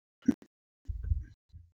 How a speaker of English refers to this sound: Like the cough I just did.